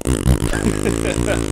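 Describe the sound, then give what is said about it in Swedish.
Someone blows a long, loud raspberry with their lips, mimicking a fart: a buzzy, low, rumbling sputter that wavers in pitch for over a second with no talking over it. “Det var precis som att du gjorde det med rumpan.”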